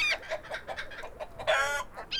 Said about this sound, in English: At first, 2 white pigeons flew and sat in the kitchen window sill, and then 2 turtle doves also came. Soon, every bird near the home swarmed in and began to pick at the ashes.